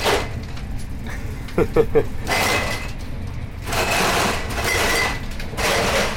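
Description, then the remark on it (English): A sliding train carriage door opens amid steady carriage rumble, followed by repeated rattling, clinking surges as a man pushes a catering trolley through, fairly loud, with faint muffled voices in the background. “The door opens and the man pushing the trolley with the catering trolley comes through.”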